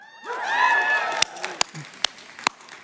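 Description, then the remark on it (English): A church audience cheers and whoops loudly for about a second in reaction to a statement about the gospel, then the voices fade and a handful of sharp, scattered claps ring out one by one. “That was significantly better than my 9 o'clock crowd.”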